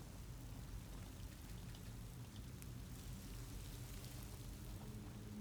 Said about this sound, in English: can hear the water from the waterfall.